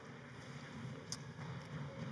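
A muffled rumble of many children's stomping footsteps, a steady clatter of low thuds as they are dismissed and leave the room during a morning sermon, with one brief sharper knock partway through.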